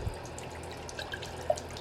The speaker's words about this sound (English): I'm going to drink some water, a little bit of water, from a 100-year-old sink.